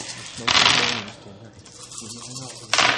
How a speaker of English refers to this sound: All right, so everybody roll them bones. Borrow dice. Wiggle dice. We're smoking bones.